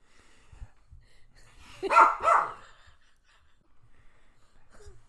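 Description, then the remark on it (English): A dog named Pep sniffs at the microphone: two quick, breathy snuffling bursts in the middle, with quiet stretches and a few soft low bumps around them. No one speaks. “If you hear it, yeah, if you hear that, it's just Pep sniffing the microphone.”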